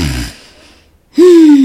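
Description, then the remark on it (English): A voice imitates Jesus snoring as he sleeps: a rough, breathy inhale, a short pause, then a loud, drawn-out voiced snort that slides slowly down in pitch. “I imagine Jesus was snoring, getting him some good sleep while they sit up there worried, talking about, whoo, we scared, Jesus.”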